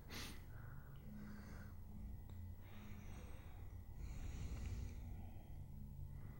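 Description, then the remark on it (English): A man who has been doused in water gasps and snorts for air in a run of ragged, heavy breaths, about four or five in succession, fairly loud over a low background rumble. “Like, right, since he's sure. been, like, doused in water and gasping for air.”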